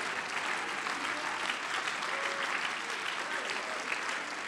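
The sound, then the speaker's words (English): A church audience claps together in worship of God in the morning, a dense, steady wash of many hands with no pauses, holding an even loudness throughout. No voices stand out above the applause. “Let the church begin to clap your hands and worship God this morning.”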